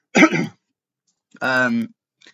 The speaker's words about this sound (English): Sorry, I have got a cough, but it's not COVID, don't worry.